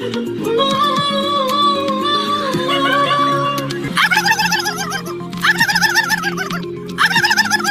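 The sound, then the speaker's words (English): Contestants in a turkey call competition at the annual Turkey Fair in France imitate a turkey's gobble, one after another: first a long warbling call, then several rapid, trilling gobbles in bursts, loud with no other talking. “These are actual contestants doing their best to sound like a turkey.”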